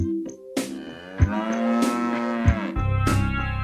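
cow mooing

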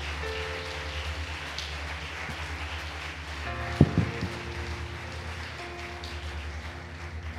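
audience clapping hands

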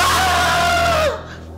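person screaming

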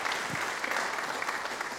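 round of applause

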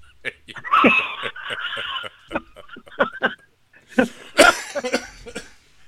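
coughing fit

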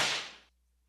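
whip crack sound effect

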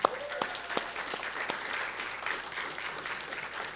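round of applause

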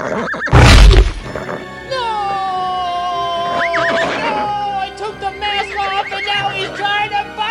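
horse neighing

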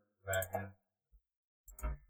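clicking

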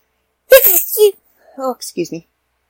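small high-pitched sneeze

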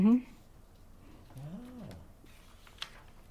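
owl hooting

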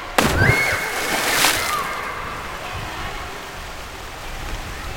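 splashing water

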